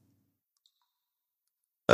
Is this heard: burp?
yes